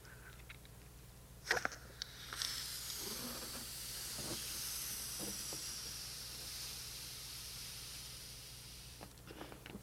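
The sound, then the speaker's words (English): A balloon held in the hand is blown up with a long, breathy rush of air that swells and steadies for several seconds, preceded by a couple of sharp rubbery clicks. No one speaks. “I got a balloon in my hand. I think I'll blow it up.”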